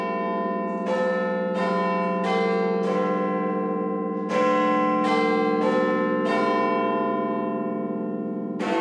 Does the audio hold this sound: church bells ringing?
yes